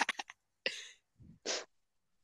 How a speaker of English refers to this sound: You seem to be coughing a lot.